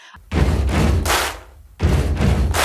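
Two heavy stomps followed by a sharp, bright clap, repeated twice in a steady stomp-stomp-clap rhythm. The thuds are deep and booming, the claps crisp and loud, with no talking.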